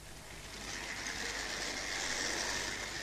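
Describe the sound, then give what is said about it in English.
A small model train pulling eight carriages runs steadily along its track, a continuous whirring rattle that swells slightly and holds without pause. No one speaks. “Ach, I'll have another wee shot at these trains first.”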